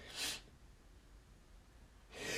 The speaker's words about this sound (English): Feeling a sneeze coming on, so bear with me.